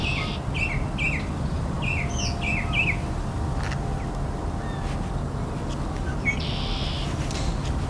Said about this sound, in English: Mockingbirds pretend to be a lot of different birds. Barn swallow, cardinal, all kinds of other birds.